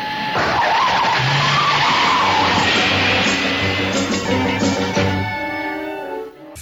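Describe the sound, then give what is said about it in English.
A car's turbine engine whines and roars up to speed as the car tears away, tires squealing, the steady rush holding before dropping off abruptly at the end. “To the Batmobile. Let's go. Atomic batteries to power. Turbines to speed. Ready to move out.”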